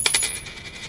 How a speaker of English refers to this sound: I retrieved a gold coin from my pocket and laid it on the bar.